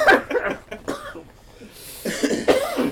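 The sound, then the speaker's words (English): A person coughs repeatedly, a series of harsh, rough bursts with brief pauses between them, growing more forceful and clustered toward the end. “There's a lot of coughing here, and I don't.”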